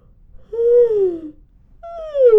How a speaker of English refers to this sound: So let's start with a good yawn stretch.